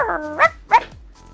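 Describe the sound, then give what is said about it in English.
Uggy, the dog from the film The Artist, barks twice in quick succession on the red carpet while wearing a bow tie. The barks are sharp, with a brief whine-like tone before the first bark and a quiet pause between. “And then my ultimate favorite was Uggy the dog from The Artist, who was barking on the red carpet with his bow tie.”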